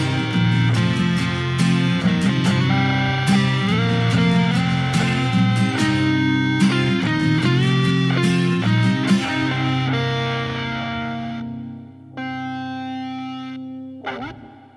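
A full band plays with effects-laden, distorted guitar, then the music thins out and sustained chords ring and fade, closing with a final swelling chord that cuts off. The song ends without any voices.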